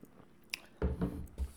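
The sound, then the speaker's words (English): A quiet sip: a brief wet click, then soft slurping and a gulp of liquid lasting under a second, with no talking. “Just a second, let me have a sip.”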